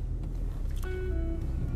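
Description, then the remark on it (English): Steady low rumble of a car interior while driving to a gas station to get snacks and drinks, with a constant road hum and a faint whining tone rising partway through; no one speaks. “Right now I am in my car and we're going to get some motherfucking snacks and some motherfucking drinks from the gas station.”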